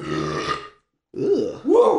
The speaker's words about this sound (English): Smell that from here. Mm. That's a good burp. Professional.